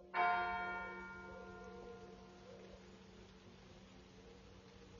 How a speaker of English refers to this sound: The church bells just rang.